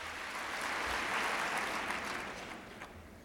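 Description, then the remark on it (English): A steady wash of audience applause as University of Minnesota president Ken Keller comes to the podium before a talk by Ms. Ferraro, many hands clapping in a dense, continuous crackle at an even, moderately loud level, easing off slightly at the end. “He's getting rather healthy round of applause.”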